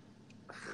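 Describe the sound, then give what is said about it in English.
A single short, dry cough bursts out after a moment of quiet, a brief breathy hack with no one speaking around it, from a person who has had a dry cough for two weeks. “I've been having this dry cough for the last 2 weeks, so.”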